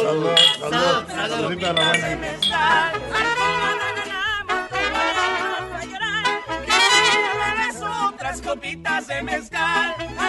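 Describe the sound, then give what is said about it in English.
Several glasses clink together in a toast at a party in Los Angeles amid lively overlapping voices, with music playing underneath and the bright chimes mixed into the busy party sound. “Cheers. Salud.”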